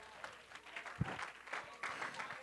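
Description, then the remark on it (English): An audience gives a hand clap of praise as people are being seated, a dense, steady patter of many hands that stays fairly soft and even throughout, with one brief low thump partway through. “So let's just give him a hand clap of praise right as you're being seated, okay?”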